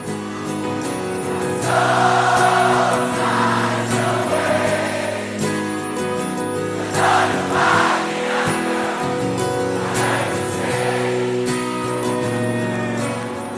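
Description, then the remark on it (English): A large festival crowd sings along on its own during a live song, with only the crowd heard in this part. It is a dense, steady wash of many voices holding a melody, with swells of louder cheering-like texture rising and falling throughout. “Not that you know, because it's just the crowd in this bit.”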